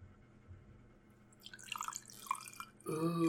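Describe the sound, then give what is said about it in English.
Whiskey is poured into a glass, starting as faint trickling splashes and building into a fuller, gurgling pour in the last second, with no talking. “That was me pouring myself a glass.”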